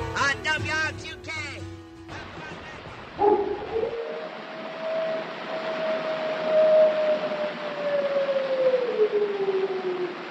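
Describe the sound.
A brief voice opens, then a long, drawn-out wolf howl rises and holds for several seconds before slowly sliding downward, over a steady background hiss.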